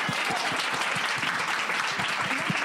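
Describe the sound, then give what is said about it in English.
A crowd applauds steadily for the vice president of casting for NBC Universal Cable Entertainment, dense overlapping claps forming a continuous wash of sound that stays loud and even throughout, with many hands clapping at once. “Yeah, you can clap for him.”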